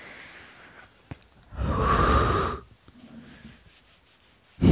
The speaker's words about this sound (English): You polishing your phone now? Yeah. Yeah. But you're polishing your phone by breathing on it and rubbing it on the duvet.